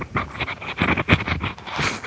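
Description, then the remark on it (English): Loud, close rustling and scuffing as something brushes right against the microphone, in a quick irregular series of bursts with muffled low thumps, and no one speaking. “that was something brushing it. Up against the microphone specifically”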